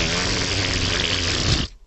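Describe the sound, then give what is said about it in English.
A fully inflated balloon that has not been tied off is let go by hand and sputters as its air rushes out, a loud continuous buzzing flutter with a low rasping pitch that holds steady for about a second and a half, then abruptly stops. “I have the balloon in my hand, and it's fully aired up, and I haven't tied it off yet, so I just let the balloon go, and the balloon goes.”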